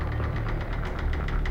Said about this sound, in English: Penny starts up the truck and turns the lights on high beam.